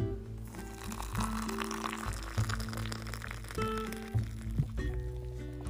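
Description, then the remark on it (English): Nescafé coffee pours steadily into a cup for several seconds, a continuous gurgling fill with shifting resonant tones as the level rises, with no one speaking. “oh, let me pour my coffee first.”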